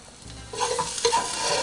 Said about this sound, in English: So same as before, just frying our garlic and onion. Can't really go wrong with animal fat and garlic.